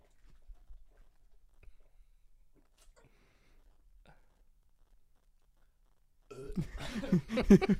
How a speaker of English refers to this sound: like the 10 seconds of silence followed by a distant burp on the podcast.